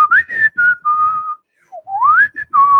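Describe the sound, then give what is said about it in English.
A person whistles a bright, cheerful tune, with a sliding phrase, a short pause, then a rising melody that settles on a held note. No one speaks. “And you can just hear whistling.”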